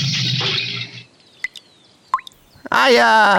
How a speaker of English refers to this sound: look, up there. There's a bunch of dripping paint.